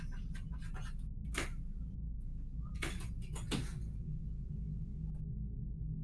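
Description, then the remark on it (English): A fat cat named Patches pushes a door open: a few short scraping bumps and knocks over a steady low rumble, with quiet gaps between them and no one talking. “And Patches is opening the door because he's fat and can do that.”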